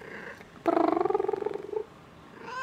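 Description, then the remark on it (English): A cat lets out a loud, rumbling, purr-like trill lasting about a second, its tone pulsing rapidly, with quiet background noise before and after and no one talking. “What do you think of that, kitty cat?”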